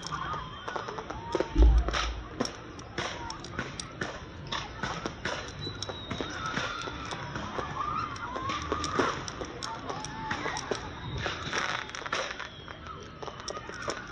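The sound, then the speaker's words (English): Rapid, irregular popping crackles away steadily, made by popcorn bursting as a sound effect imitating a Fourth of July fireworks display, with a murmuring crowd and scattered voices underneath throughout. “This crowd is watching fireworks, right? Take away the real effects, and they end up watching popcorn.”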